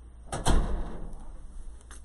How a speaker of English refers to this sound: Close the door.